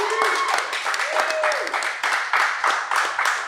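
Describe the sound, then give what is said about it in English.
A crowd at the Rip Curl San Clemente retail shop applauds with steady, dense clapping for several seconds, loud and continuous, with a few voices and whoops rising over the clapping. “So a big round of applause to everybody who's here for the retail shop.”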